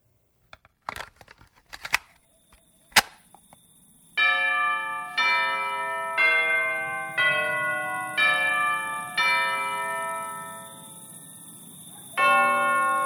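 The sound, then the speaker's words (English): A bell tolls the hour at 1 a.m. in a steady series of ringing strikes, each overlapping the last's fading hum, then one more after a short pause. Brief crinkling, rustling noises come before the tolling begins. “That would be the bell indicating it's 1 a.m.”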